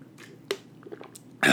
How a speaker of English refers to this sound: hold on, let me drink some water real quick.